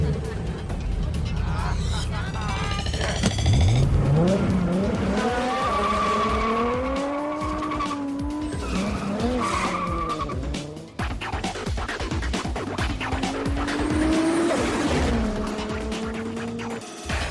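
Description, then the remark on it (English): A Ferrari sports car engine revs and whines through rising and falling gears while tires screech and skid loudly, the roar continuous for the whole stretch, in a scene from The Fast and the Furious. “Nice car. What's the retail on one of those? More than you can afford, pal. Ferrari.”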